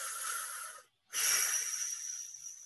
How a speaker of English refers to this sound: The next one to free yourself is to breathe deeply. Breathing, expanding your lungs all the way into your chest and all the way out.